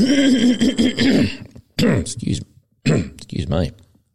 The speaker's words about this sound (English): For those of you who are Patreon members, excuse me, I'm just going to have a cough here.